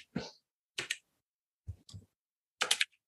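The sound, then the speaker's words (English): Percentile dice rolled for a party luck roll in a game clatter in four short, sharp rattling bursts separated by brief silences, tumbling across a hard surface, with no one speaking. “So can you please roll me a percentage dice?”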